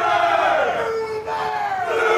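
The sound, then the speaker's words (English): A loud, dense crowd at the Texas State Fair roars and shouts as people stand, walk and mill around. Many voices blend into a sustained wall of noise with a brief dip midway before surging again. “All these people that are standing behind us and walking and milling around behind me here”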